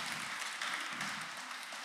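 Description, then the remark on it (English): An audience applauds a man who has just run from point B back to point A, a steady dense wash of many hands clapping at once, bright and even in loudness throughout with no voices standing out. “So, all right, give him a big hand clap.”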